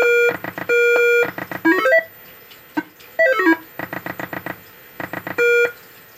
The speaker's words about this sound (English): For those of you just listening to this field report, I'll bet the annoying little beeps without any commentary over it are just the best thing ever to listen to in your ear holes.